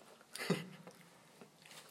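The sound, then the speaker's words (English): A sip of Mountain Dew soda: a short slurping burst followed by a soft gulp and faint wet mouth sounds, with no talking. “All right, before this gets too long, I'm going to take a drink.”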